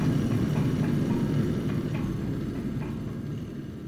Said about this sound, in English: Because it's just a small thing, you know? It's not much bigger than this desk. To hear it and feel it, if you haven't ever been at a rocket launch or near a rocket engine, it's almost like a religious experience.